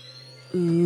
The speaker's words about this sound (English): Ooh. Yeah. The blue power up. Vibrating. Yeah. Oh, it'll vibrate. That's right.